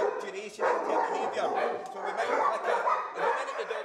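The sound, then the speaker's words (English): Many dogs bark and yelp at once in a continuous, overlapping din, loud and reverberant, with occasional whines mixed in, at an animal rescue and rehoming centre for sick, injured and stray animals in Cardonald, South Glasgow, Scotland. “From the Pentland foothills to Cardonald in South Glasgow, this is the Scottish SPCA's Glasgow Animal Rescue and Rehoming Centre.”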